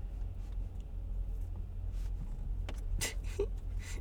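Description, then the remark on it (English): A car drives and turns out onto the road, heard from inside as a steady low engine and road rumble, with a few brief clicks and soft thumps toward the end; nobody speaks. “Wait, the first test will be turning out of here. How about I turn out of here and then we start the pod?”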